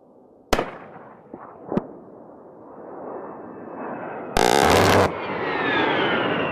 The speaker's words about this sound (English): They're the ones that go, this sounds like a burp. Yeah, like a big burp like gun. Little, yeah, that's that cannon on the front. Yeah, the, you know, the 30 millimeter like a, Gatling gun.